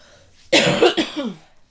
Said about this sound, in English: We're about to take a commercial break so … can cough until she drops